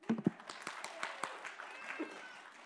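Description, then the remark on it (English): An audience claps in a short, scattered burst, individual hand claps landing irregularly rather than in rhythm, fading after a couple of seconds. “Give him a clap, eh?”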